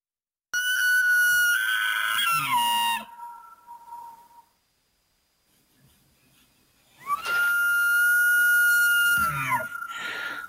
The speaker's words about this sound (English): Thanks to the magic of YouTube, here are some elk noises. So that's what they would play if the Edmonton Elks scored a touchdown.